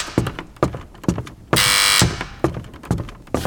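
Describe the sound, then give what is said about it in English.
A harsh electric doorbell buzzes once for about half a second amid a steady series of loud thumping knocks on a door, roughly two per second, with no one speaking: impatient trick-or-treaters at the door at night. “Looks like I've got my first trick-or-treaters of the night. And from the sound of it, they're starting to get impatient.”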